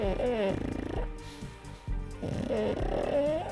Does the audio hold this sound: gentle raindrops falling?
no